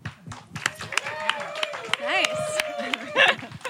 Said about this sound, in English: laugh really loud and clap a lot and do those things that live audiences do. We don't have an applause sign, but you know when to do it.